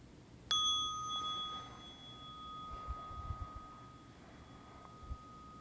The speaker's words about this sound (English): So I'll just ring the bell to welcome that transition.